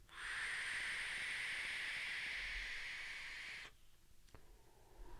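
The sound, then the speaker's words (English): A vape device with a single 0.3-ohm coil fired at 45 watts gives a steady, airy whistle with a hissing edge from uneven airflow during an inhale, holding about three and a half seconds, then cuts off abruptly, leaving faint background noise and a brief tick. “What you can knock is that whistle.”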